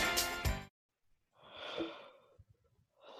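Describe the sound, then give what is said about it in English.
A long, breathy yawn rises and trails off after a brief burst of sound, with soft exhaled breaths and another breathy sound starting at the end. No one speaks. “You had to yawn right as I started recording.”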